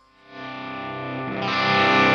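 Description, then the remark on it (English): A sustained electric guitar tone swells up in volume as a boost is used to modulate the distortion, starting clean and then turning gritty and distorted partway through, growing brighter and fuller until it ends loud and saturated. “So I just use it oftentimes to even just turn off the guitar in between song, or just, you know, modulate distortion if you want to go from like a clean tone to a little gritty tone in one fell swoop.”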